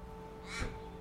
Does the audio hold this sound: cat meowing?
no